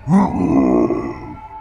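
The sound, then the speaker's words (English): A voice imitates a creature's howl as a flashlight beam lights up the ceiling: one loud, drawn-out guttural cry that jumps up in pitch at the start, holds steady and rough, then slowly fades away. “A weak little beam of light popped on the ceiling, and the creature howled.”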